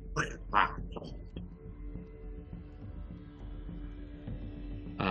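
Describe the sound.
A voice imitates a clicking growl coming out of something that was hit: a few sharp vocal bursts, then a low, rough, sustained rumble broken by rapid clicks, moderately loud, ending with a brief breathy burst.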